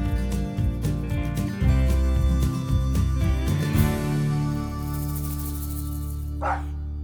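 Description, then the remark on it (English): A dog barks several times in quick bursts during the first few seconds, loud, over a dense background of sustained musical tones that carry on after the barking stops. “I love the dog.”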